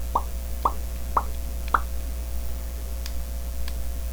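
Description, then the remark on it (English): Four quick, evenly spaced bubble pops with a wet plopping tone, each a short mid-pitched burst, followed by faint ticks over a steady low hum. “Dude over here popping bubbles.”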